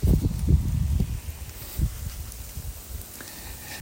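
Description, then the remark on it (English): Soft, rhythmic footsteps of a passerby in a raincoat with an umbrella thud past on a sidewalk over a steady hiss of rain, quickening and bunched at first, then fading to a few scattered steps. No one speaks. “I'm recording outside on the sidewalk in the rain for the ambiance, and I didn't see somebody snuck up on me.”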